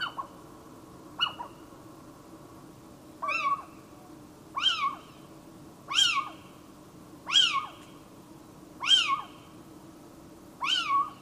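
A little owl gives a series of about eight sharp, mewing calls, evenly spaced roughly every second and a half, loud against a quiet, steady background.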